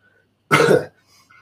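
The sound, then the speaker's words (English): A single harsh, throaty cough bursts out, lasting under half a second, with near silence before and after. “Excuse me and my awful cough.”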